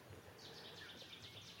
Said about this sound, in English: Seti's warbler again, getting a bit closer. See if we can get that explosive burst of Seti's warbler.